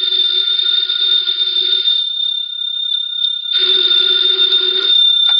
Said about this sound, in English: Later that day, the phone in the Lawrence house on Berry Hill Lane began to jingle. And this time it was no phony.